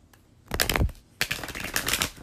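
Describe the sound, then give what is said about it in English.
Tarot cards from a classic Rider-Waite-Smith deck being shuffled: two quick bursts of crisp, papery riffling and flicking, the second longer and steadier, with no talking. “Okay, so I'm going to go ahead and start shuffling the cards.”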